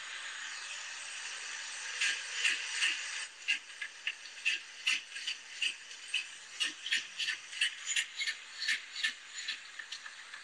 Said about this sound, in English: And I'll play the huffing just because it's kind of a staticky recording there, but the that is the bear huffing.